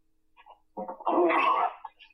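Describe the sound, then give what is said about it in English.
A single sneeze: a short, breathy intake builds up, then bursts into a loud, explosive blast lasting about half a second before trailing off into quiet breath. “About to sneeze.”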